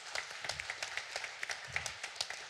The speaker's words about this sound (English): So give yourselves another round of applause for just a great night.